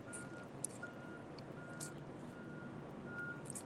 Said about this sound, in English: I hope you guys aren't picking up too much of the construction noise in the background here, but definitely there's some trucks and road work stuff happening up the road, and it'll definitely be a little quieter as we get downriver away from that.